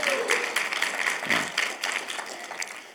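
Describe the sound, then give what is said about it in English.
A scattered round of applause from an audience welcoming a guest during a morning church service, many overlapping claps forming a steady patter that holds for a few seconds at moderate loudness before thinning slightly. “Go ahead and clap.”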